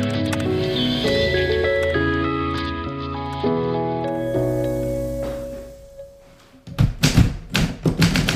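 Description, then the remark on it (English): Gentle tonal music fades out, then a quick burst of sharp key strikes on a vintage typewriter in a small typewriter store in Goodlettsville, Tennessee, clacking in an uneven rhythm. “I'm in a small typewriter store in Goodlettsville, Tennessee, outside of Nashville.”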